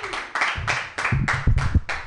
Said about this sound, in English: We are gonna keep it going. We got three. Oh yeah, I guess two or three comedians left. Please clap your hands for Pranav.